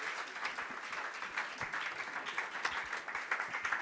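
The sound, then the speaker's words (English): A crowd applauds steadily to welcome a singer, many hands clapping in a dense, continuous patter that stays fairly loud throughout with small swells, no voices standing out. “Keep clapping.”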